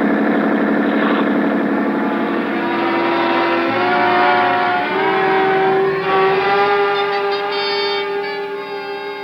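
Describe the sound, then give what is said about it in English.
A powerful police boat engine roars steadily at high speed, its loud droning hum rising slightly in pitch partway through and holding strong throughout, with no voices. “A 20-minute start isn't much when a schooner with auxiliary power is matched against a police boat.”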